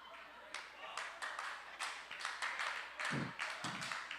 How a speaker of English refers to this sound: Got some brothers over here clapping their hands.